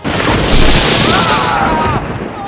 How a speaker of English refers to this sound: Oh! We've been struck by lightning!